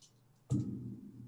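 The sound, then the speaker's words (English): Dice are dropped onto a table during a tabletop game with a sudden soft clatter, then tumble with a low, continuous rolling rumble that lasts until the end, coming up 9. Fairly quiet, with no talking. “I rolled a 9 plus 1.”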